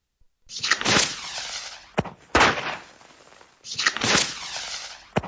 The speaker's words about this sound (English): Oh! Firework, I've heard that.